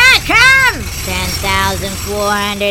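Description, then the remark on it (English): A voice imitates a very old-timey Jules Verne tunneling machine starting up: two swooping, rising-and-falling whines, then a series of steady, droning mechanical hums over a low rumble. “Would you like an extra set of keys for your very old-timey Jules Verne tunneling machine? No, I'm drilling solo, baby!”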